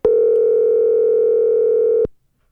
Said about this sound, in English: All right, here we go. Phone up here. Dialing and smiling.